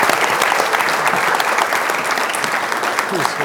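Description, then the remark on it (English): Sustained applause from a large crowd welcoming Prime Minister Jomaa, a dense, steady patter of many hands clapping at an even loudness throughout, with no gaps or voices standing out. “Would you all please, with your applause, welcome Prime Minister Jomaa.”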